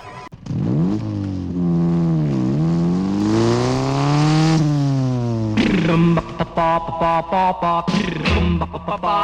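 A motorcycle engine revs close up, its pitch rising and falling in long continuous swells, then breaking into a series of short, choppy throttle blips toward the end.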